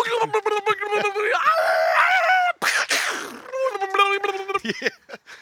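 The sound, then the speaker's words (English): A voice imitates a 1920 car breaking down and trying to start, in the style of a Hanna-Barbera cartoon, with rapid chugging, strained vocal whines and a brief hissing burst midway, loud, for about five seconds. “Okay, but now it's a Hanna-Barbera cartoon of a 1920 car breaking down.”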